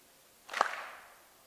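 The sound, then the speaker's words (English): A single sharp hand clap, bright and snappy, demonstrating a clapping rhythm for people to join in with, with a brief ringing tail that fades within about half a second. Nothing else is heard and no one speaks. “And I'm going to give you a downbeat and how to clap to this.”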